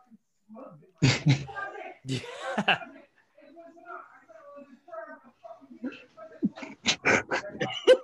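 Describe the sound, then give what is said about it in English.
Muffled, agitated voices trade sharp outbursts in the background, people arguing about a dog having been killed, with loud clipped bursts between stretches of quieter, indistinct back-and-forth talk. “Now it sounds like people are arguing about why'd you kill the dog in the background.”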